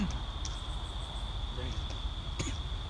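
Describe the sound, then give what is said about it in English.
A steady, high-pitched drone of crickets chirping continuously through the night air, over low rumbling wind noise, with a faint murmur of voices in the background. “Because the crickets probably, and the wind is everything, but...”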